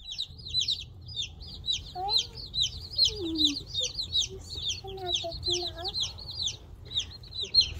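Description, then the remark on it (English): Many baby chicks, bought live by mail and picked up from the post office in a box, peep nonstop in a dense, overlapping chorus of high chirps, with a faint low voice murmuring briefly underneath partway through. “We can hear them chirping.”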